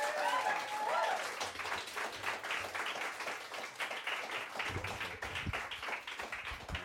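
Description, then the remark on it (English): An audience applauds steadily, dense clapping at a fairly loud, even level for several seconds, with a few brighter tones and murmurs mixed in near the start. “Could you take that applause and double it”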